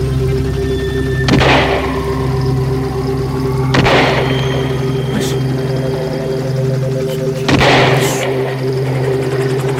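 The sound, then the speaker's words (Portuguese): Three loud, sharp gunshot-like blasts ring out a few seconds apart, each with a brief ringing tail, over a steady low engine-like hum that runs throughout. “Faz tempo que a gente não se vê, mas sinceramente eu não esperava você receber com uma saraivada de tiros, meu amigo.”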